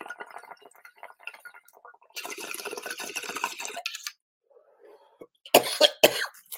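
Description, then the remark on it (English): A sick person has a loud bout of coughing, with a couple of sharp harsh coughs near the end, preceded by raspy breathy sounds and some faint clinking. “Man, it makes me cough even more because I'm sick.”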